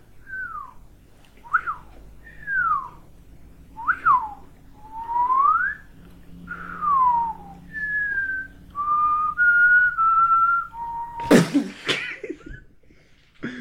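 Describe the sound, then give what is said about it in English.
A person whistles a short tune of about a dozen notes, some swooping and some held steady, clear, then breaks off with a brief burst like a laugh or cough. “Yeah, it was a very terrible whistle. It's a good whistle there.”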